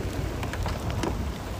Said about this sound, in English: Oh, the rain is cold. The rain is cold. I know.